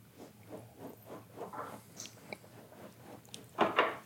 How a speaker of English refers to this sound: We're enjoying this while the dog's doing some ASMR down there. She's, she's... She's digging her spot.